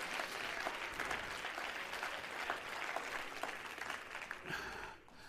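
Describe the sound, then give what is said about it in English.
A church audience claps steadily in dense, continuous applause during a sermon, with scattered voices calling out yes, sustained for several seconds before thinning slightly near the end. “Everybody clap your hands and shout yes.”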